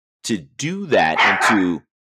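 A dog barks and yips, one short bark followed by a longer run of loud, strained, whining barks that last about a second and a half.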